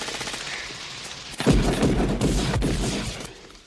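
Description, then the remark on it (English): Movie gunfire from a film clip featuring Jesse Ventura erupts after a brief stretch of hissy background, a loud, rapid rattle of automatic shots with a heavy booming low end that sustains for about two seconds before tapering off. “Yeah, you're going to hear both the shouting and the one-liners, and definitely the gunfire in this clip.”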